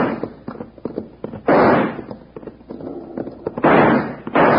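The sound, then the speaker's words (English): Six-gun revolver shots, fired to scare a man off at long range, ring out: two loud booming blasts about two seconds apart, each trailing off, with a scatter of sharper, quieter cracks and pops in between. No one speaks. “Well, we can't hit him at this range with a six gun. We can scare him off, though.”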